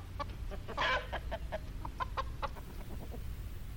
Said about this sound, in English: What? Was that a rooster?